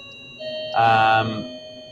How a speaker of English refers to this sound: You got a doorbell in the background? Yeah, I didn't know we had a doorbell in the office.